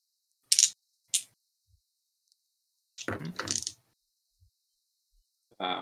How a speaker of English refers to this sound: I'm guessing I'm waiting for something to finish rolling. What do you mean? It's your turn. Oh, I heard dice, so I thought something was happening.